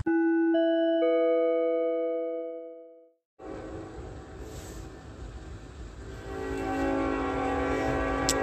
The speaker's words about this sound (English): And that is the state that engages in the incessant sound of a train. That's called audible activity. That's what that is. All right. And that is ongoing while I'm operating my phone, ongoing throughout the night as well.